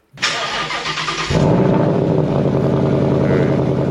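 A car engine cranks and catches, then settles into a loud, steady revving roar with a throaty rumble, continuous with no one speaking.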